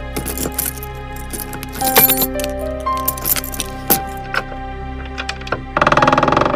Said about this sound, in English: Well, we've opened the front door now. Maybe you heard the hinge squeak a little.